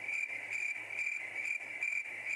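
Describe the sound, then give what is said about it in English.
A crickets sound effect: crickets chirp steadily in a dense, continuous trill with a pulsing rhythm, fairly loud, with no voices or other sounds. “It's crickets for you.”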